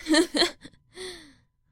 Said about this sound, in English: Audible gasp.